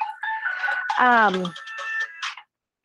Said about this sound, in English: Oh goodness, that's embarrassing. My phone was just ringing. Sorry about that.